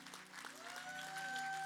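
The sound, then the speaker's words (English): Sustained applause from an audience for pastors James and Darlene Chant, a dense wash of many hands clapping at a steady, even level without a break, with a faint high tone sounding through it toward the end. “Yeah, I mean, that's worth standing up and letting them know how much, and continuing to clap, just how much you appreciate them and who they are.”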